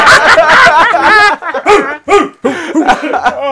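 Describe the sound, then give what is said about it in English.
Several people bark and yip in imitation of dogs, loud, a dense overlapping burst at first that breaks into scattered individual barks and whimpers. “We will bark.”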